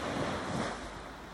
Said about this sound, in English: I love coming to the beach because I feel the waves bring great energy from far, far and away.